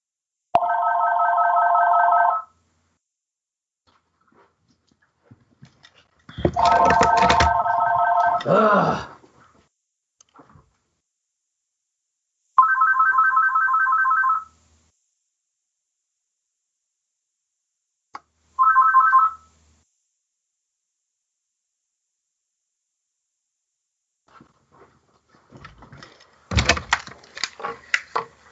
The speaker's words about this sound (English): Phone's ringing. Hold on, let me stop it. Who's calling during the show?